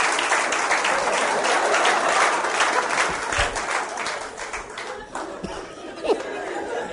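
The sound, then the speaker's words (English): A crowd claps steadily, the dense applause continuing for several seconds before thinning slightly, with murmured chatter and a bit of laughter mixed underneath. “Clap. Clap, my clap.”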